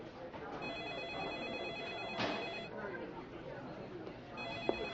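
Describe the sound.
A telephone rings repeatedly with a steady electronic trill at a task force headquarters, over a busy room of murmuring voices and background clatter, the ringing not overpowering.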